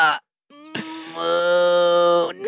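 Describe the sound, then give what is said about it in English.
A person imitates a cow's moo with one long, loud, sustained droning call that holds steady for well over a second before trailing off, preceded by a brief vocal sound and a short pause. “He's mooing like a cow.”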